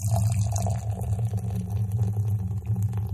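Gozas Are Red beer, 5.6% alcohol, pours steadily from a 16-ounce can into a glass, a continuous gurgle and splash with a low rumbling undertone, lasting a few seconds without any voices.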